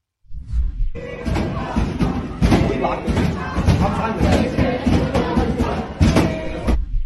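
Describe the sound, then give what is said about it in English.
Heavy, repeated banging by protesters on a library door at Cooper Union, with loud thuds and slams over a dense roar of many voices shouting and chanting "Free Palestine". “Here's some film of students at Cooper Union stuck in the library as pro-Hamas protesters pounded on the door.”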